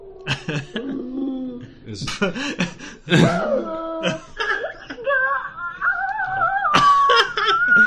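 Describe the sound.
A human voice imitates a dog, yipping and whimpering before stretching into long, wavering howls that climb in pitch. The sound is fairly loud, with no other talk.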